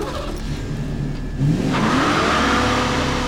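An El Camino's engine idles with a low rumble, then revs hard around halfway through, its pitch climbing steadily as the vehicle accelerates away along a dirt road toward the highway. The loud roar continues to the end.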